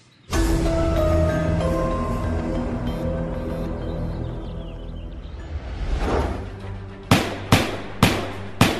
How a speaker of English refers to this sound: Minutes later, neighbors think they hear multiple gunshots coming from the Hudson home, but it goes unreported to police.